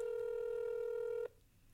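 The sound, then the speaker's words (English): A phone call rings out: one steady electronic ringback tone holds for over a second, then cuts off abruptly, leaving a faint line hiss. No one answers or speaks. “If it ever goes to voicemail, is the phone just going to ring all day?”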